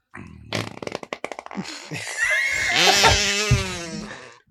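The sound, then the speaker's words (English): A loud fart: a quick run of sputtering pops followed by a long, drawn-out droning blast that wavers in pitch before cutting off. “Actually, vampires don't have body functions, so they wouldn't fart.”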